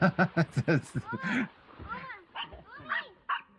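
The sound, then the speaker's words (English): A dog lets out a quick run of four or five sharp barks, then shifts into drawn-out whining yelps that rise and fall for the remaining few seconds. “The dog. Where'd she go?”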